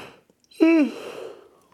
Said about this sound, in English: I gotta yawn.